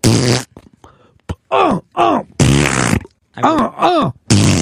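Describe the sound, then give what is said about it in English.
Loud farting noises alternate with short strained grunts and groans, several bursts in quick succession with brief pauses between, probably a voice imitating the sounds rather than real flatulence. “You're just grunting and fucking ripping big farts.”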